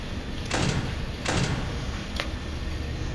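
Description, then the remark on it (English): A heavy mechanical security door in a video game slides shut with a broad whooshing clank, followed by a second similar thud and a brief faint tap, over a low steady hum. “I would close the door.”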